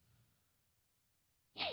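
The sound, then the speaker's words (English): A single sharp, loud sneeze bursts out near the end after a stretch of near silence with faint low rumble, with a brief breathy intake leading into it. “I just sneezed.”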